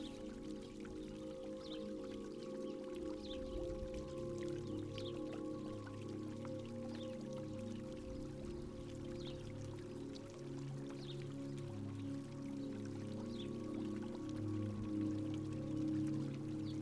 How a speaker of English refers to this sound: As you start walking towards the fountain, a rare desert rain begins to fall.